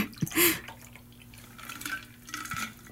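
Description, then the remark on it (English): A cocktail is poured from a shaker into glasses, splashing and trickling, with a brief bright clink near the start and a thin continuous hum beneath. “And pour it into our glasses.”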